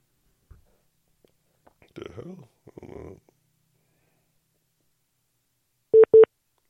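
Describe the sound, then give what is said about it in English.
Two short, identical electronic beeps ring out close together near the end, a clean steady call-waiting tone signalling another incoming call on the phone, following some faint murmured speech earlier. “No, I've never got another call on this phone, and they just did that just now.”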